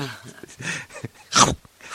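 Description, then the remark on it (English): A single sharp, loud sneeze bursts out after a moment of low vocal sounds, a short explosive hiss that quickly fades into quiet. “God bless. Salud.”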